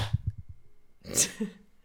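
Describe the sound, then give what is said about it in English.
A sharp hand clap, or two claps landing a split second apart, rings out after some low, murmuring voice sounds; people clapping together on a count of three. “One, two, three, clap.”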